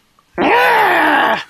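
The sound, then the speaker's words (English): A person loudly imitates the weird yell of a Rabbid, the cartoon creature from the Rabbids games. It is a single sustained, strained cry lasting about a second, with a slightly falling pitch and a raspy, groaning edge. “There's my Rabbids impression for you.”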